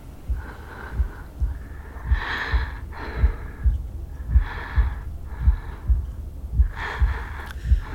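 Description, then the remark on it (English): Slow, airy breaths drawn in and let out, several unhurried cycles in a row, over a soft, steady low thumping like a heartbeat. No one speaks. “Breathe with them. In, out. In.”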